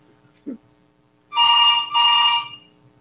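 A phone rings on an outgoing call that then goes to voicemail: two loud, buzzy electronic rings in quick succession, each about half a second long, preceded by a brief low thump.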